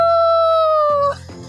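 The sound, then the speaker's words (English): A person imitates a wolf howl as a dare in a game of truth or dare: one loud, sustained high-pitched note that sags slightly in pitch for about a second, then breaks off into a rougher, quieter vocal trailing sound. “Howl like a wolf for 10 seconds.”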